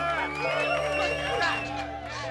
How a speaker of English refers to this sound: he was mobbed by a group of screaming women. But security held them back,